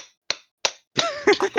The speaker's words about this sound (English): Okay, fuck it, hammer.